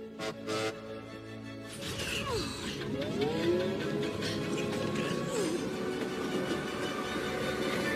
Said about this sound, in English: Hey! There's the train!